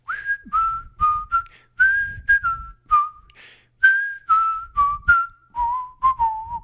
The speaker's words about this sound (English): I'm a little bit parched. It's going to be hard to whistle. If you're decent at whistling, why don't you whistle this part with me?